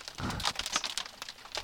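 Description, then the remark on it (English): Hail pelting a car's glass window: a dense, irregular rattle of sharp taps and clicks, steady and fairly quiet, with no voices. “Who knew hail was going to be hitting the glass window?”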